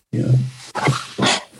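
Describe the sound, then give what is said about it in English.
A person imitates a dog's whimper: a low, drawn-out whine followed by two shorter, higher yelps, with no other talking. “That was my whimper.”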